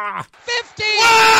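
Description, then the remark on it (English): An excited, wordless scream from a sports broadcaster calling the Mountaineers' win over the Michigan Wolverines: a few short vocal bursts build into a loud, sustained, high-pitched yell that grows stronger toward the end. “He did the initial scream, but he felt like, again, polished broadcaster.”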